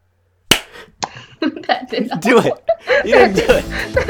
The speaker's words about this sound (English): Okay. Can we clap in unison? Will that work? Sure. Okay. Just give it like a three count. Okay. You count down with your fingers. Go ahead. One. No. Don't say anything. It has to be silence and then a big clap.